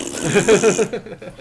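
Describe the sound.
A person blows a buzzy raspberry with their lips as a thumbs-down reaction to a Mummy movie trailer, a wet, flapping mouth fart that sputters in a few quick pulses for under a second and then cuts off.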